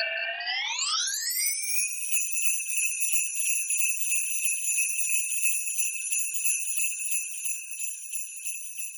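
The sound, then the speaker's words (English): Bright, jingling bells ring out alone, their shimmering tones gliding upward in pitch over the first second, then holding a steady, sustained high chime at an even loudness. “All right, cue the bells.”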